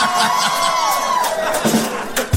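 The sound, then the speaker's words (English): A crowd cheers loudly and steadily, with high whoops and a long sliding cry rising above a dense wash of shouting voices for a couple of seconds. “Round of applause from me on the vocal.”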